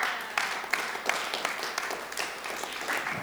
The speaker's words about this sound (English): You can clap for her as she comes.